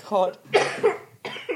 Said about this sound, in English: Man, you still got this cough, but you're right.